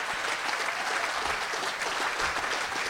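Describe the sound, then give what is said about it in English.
A crowd claps steadily and densely throughout, a sustained wash of applause with no pauses and no one speaking over it; the audience is applauding for having come out tonight. “Give it up for you guys coming out tonight.”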